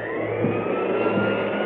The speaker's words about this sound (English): Can't hear you over the vacuum.